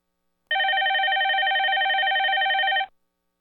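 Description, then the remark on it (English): A telephone rings once with an incoming call during a radio show, a loud, steady electronic trill lasting a little over two seconds, clear, with silence before and after and no voices. “I think we have a call coming in.”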